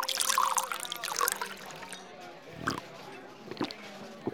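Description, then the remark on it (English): Whiskey pours into a glass in a brief, splashy gurgle that trails off, followed by a few soft clinks and faint background voices. “Just pour me a glass.”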